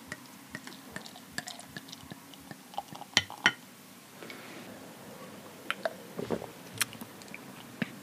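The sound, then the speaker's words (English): A swing-top bottle of Bhúrchorcra beer from the West Kerry Brewery is opened at the microphone by pulling its metal lever, giving a sharp pop among small clicks. A soft fizzing pour and scattered drips follow, with no one talking. “you pull the metal kind of lever thing and it pops open. So hopefully it's going to make a nice sound. And I'm going to put it up the microphone here.”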